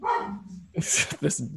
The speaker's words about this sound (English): It's, puppy. Whoa. This big dog.